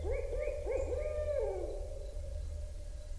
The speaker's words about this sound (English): Gordon made this recording early in the morning as the birds were waking up and singing to the dawn